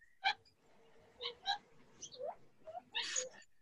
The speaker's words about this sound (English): I hear some birds. So nice.